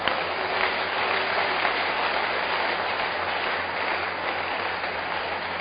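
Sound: audience clapping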